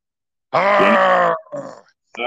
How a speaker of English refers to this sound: I sound my barbaric yawp from the wilderness, and it is heard hundreds of miles away. That's a yawp.